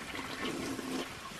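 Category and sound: household object, toilet being flushed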